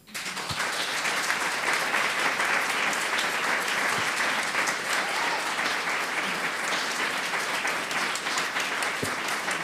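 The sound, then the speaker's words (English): An audience of women applauds loudly and steadily for about ten seconds, a dense wash of clapping with cheering mixed in, holding an even level from start to finish with no talking. “You're listening to the roar of the female humans.”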